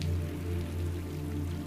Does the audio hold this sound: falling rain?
yes